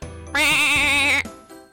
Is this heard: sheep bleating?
yes